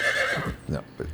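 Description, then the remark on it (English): A horse lets out a short, loud whinny, a high quavering cry that drops into a few lower, breathy snorts. “I love that horse.”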